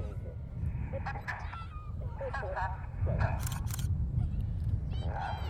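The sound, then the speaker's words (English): A few sharp camera shutter clicks in a quick burst, taken on a windy day while recording, crisp against steady wind rumble, with faint voices and honking bird-like calls in the background. “Excuse the camera noises, just trying to get some shots while we're recording.”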